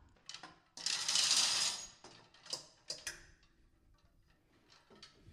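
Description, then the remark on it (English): A hoodie is hung on a closet hanger: a loud soft rustle of fabric followed by several light, hard clicks and taps of the hanger settling, with no talking. “Let's hang this baby up.”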